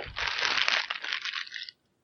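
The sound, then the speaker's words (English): A plastic bag crinkles and rustles for under two seconds, a dense, crackly, fairly loud scrunching with no voices, then it stops abruptly. “I've got a plastic bag here.”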